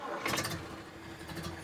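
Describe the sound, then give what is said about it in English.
A car engine cranks and turns over, settling into a steady low idle with a continuous rumble, fairly loud; Frankie Yale is starting his car to drive home. “After receiving a strange call about his wife, Frankie Yale went to his car to drive home as quickly as possible.”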